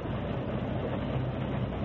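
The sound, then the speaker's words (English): A locomotive engine, with a warden beside it, leaves the wall, rumbling steadily along the rails in a continuous low, heavy drone with a dense rattling wash on top and no pauses. No one speaks. “Now he and the engine are leaving the wall.”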